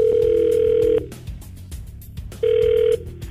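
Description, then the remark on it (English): An outgoing phone call's ringback tone: a steady electronic purr sounds for about a second, pauses, then starts again, loud and clear with faint line hiss and no talking. “We're going to call her up.”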